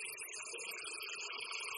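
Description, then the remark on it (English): A wild sprout, its leaves removed, being washed under water: a steady, hissing rush of running water with soft, uneven splashing and rubbing, constant in level throughout, with no voices. “Washing the sprout.”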